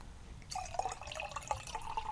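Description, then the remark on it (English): Beer being poured from a bottle into a cup, a steady bubbling, gurgling stream that starts abruptly and continues with a rising tone as the cup fills; no voices. “Hey, you want to hand me your cup so I can do your pour, too?”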